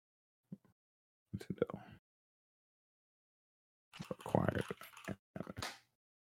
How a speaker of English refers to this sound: Oh, man, I'm always typing in the wrong area. Don't you hate when that happens?